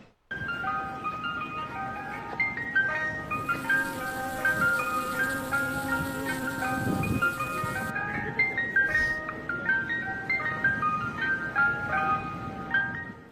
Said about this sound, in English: Ice cream truck is always a winner.